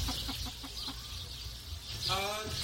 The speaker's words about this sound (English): Adorable! Those are the chickens! You're the cutest chickens!